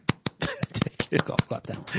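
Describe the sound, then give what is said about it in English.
A quiet golf clap: a dozen or so light, crisp hand claps in a quick, fairly steady rhythm, with a murmuring voice mixed in underneath. “Golf clap that bad boy.”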